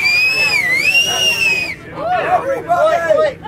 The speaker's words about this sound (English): You're the best whistler I know. Can you whistle and get everyone's attention so we can say goodbye?